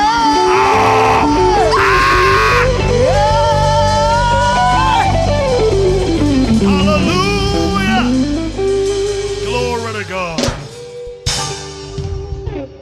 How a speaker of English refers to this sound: Celebrate God. Shout from your belly. Shout from your belly. Some of you are shouting from your lips, from your tongue, from your throat, but a real deep.